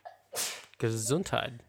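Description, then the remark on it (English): A single forceful sneeze bursts out with a sharp, hissy blast, followed by a short voiced, vocal sound that trails off. “Gesundheit.”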